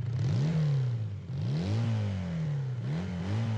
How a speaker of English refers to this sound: It's a sweet-ass motorcycle?